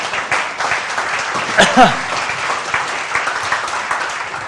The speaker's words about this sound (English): Sorry, that was a good opportunity to clap. I'll let you clap.